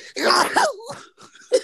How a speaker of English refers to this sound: Why do you sneeze like that?